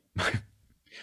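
A single short, sharp sneeze sound, voiced as a spoken imitation: a loud, breathy burst, followed by a brief quiet tail and a faint hiss at the end.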